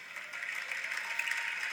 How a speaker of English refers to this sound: Sympathy applause. Sympathy applause or cracked out people in the audience.